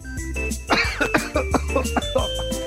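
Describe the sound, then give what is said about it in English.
A run of harsh, throaty coughs from a tickle in the throat, five or six sharp bursts in an uneven rhythm over a steady low hum, with no talking in between. “I've had this tickle in my throat for the past 5 minutes.”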